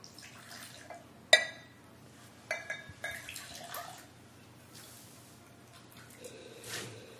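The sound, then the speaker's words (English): A single bright, ringing clink of a water glass stands out, followed by a few softer taps and faint watery trickling and dripping sounds. No one speaks. “Smells like a glass. Sounds like a glass?”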